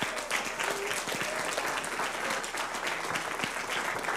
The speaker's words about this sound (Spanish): Amén. Aleluya. Un aplauso al que vive.